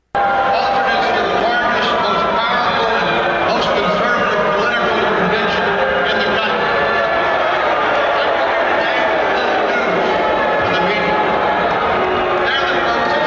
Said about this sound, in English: Now, what you just heard went on for 14 minutes straight, the entire speech, constant booing.